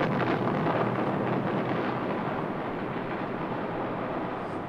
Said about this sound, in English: At zero minus 15 seconds, a warning tone sounds in the plane. The atomic bomb.